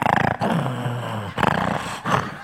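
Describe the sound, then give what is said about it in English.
A voice imitates a person's loud snoring at about 1 o'clock in the morning: three harsh, rumbling, growl-like snores, each followed by a brief pause, rough and guttural throughout with no other talk. “You are snoring so loud, you're about to rumble me right out of this room.”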